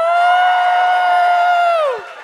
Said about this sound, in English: And cheer if you like it.